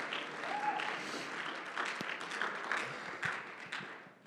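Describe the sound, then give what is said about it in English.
An audience claps their hands unto the Lord in steady, dense applause that holds at a fairly even loudness for several seconds, a crackling wash of many overlapping claps with no voices standing out. “I wish everybody would clap their hands unto the Lord.”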